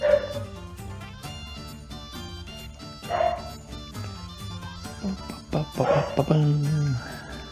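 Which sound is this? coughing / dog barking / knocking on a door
dog barking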